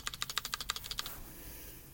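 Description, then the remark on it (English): A quick burst of about a dozen sharp, clicky mechanical keyboard space bar presses in a steady rapid rhythm, crisp, then a short stretch of quiet room noise. “Want to hear clicky sounds? Listen to this. Oh, goodness. It's in Mechanical Keyboard Plus, but the space bar.”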